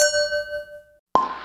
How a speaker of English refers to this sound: Here we go. In Arizona, Michigan, here in North Carolina, virtual clink of the glass to you, ladies.